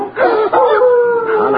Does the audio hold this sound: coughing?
no